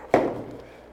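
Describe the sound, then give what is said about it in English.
Dice rolled for the DM in a tabletop game hit a table with one sharp clack, then a short fading resonance and a couple of faint ticks as they settle. There is no talking. “Make the roll.”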